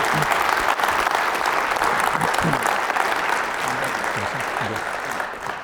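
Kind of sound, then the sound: crowd, audience round of applause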